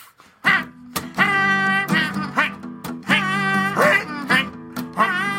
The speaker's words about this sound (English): Check out that goosey sound going quack. Flap, flap, flap.